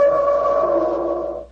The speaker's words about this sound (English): The instrument sounds exactly like an elephant trumpeting.